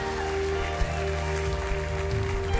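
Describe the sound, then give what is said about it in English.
A church audience gives a clap offering, clapping steadily in a dense wash of many hands, with a sustained organ-like musical tone droning underneath throughout. “Give these wonderful people a great big clap offering.”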